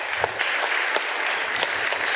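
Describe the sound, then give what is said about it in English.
A crowd applauds steadily, a dense wash of many hands clapping at once with a few sharper claps standing out, sustained and fairly loud throughout the brief moment. “Give them a round of applause there, folks.”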